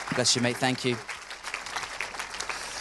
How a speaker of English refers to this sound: Fantastic. Let's give him a huge round of applause.